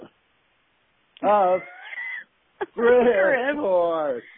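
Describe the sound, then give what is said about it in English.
A cat yowls twice in close succession, each cry loud, drawn-out and wavering in pitch, the second longer and more strained, with a brief squeak between them. “What are you juggling cats over there?”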